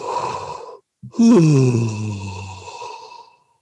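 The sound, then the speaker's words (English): As a vocal warm-up with the jaw relaxed so the mouth drops open, a deep inhale, a brief pause, then a long, relaxed yawning sigh that slides downward in pitch and trails off softly, with no words spoken. “Inhale and just let out a nice, almost a yawn.”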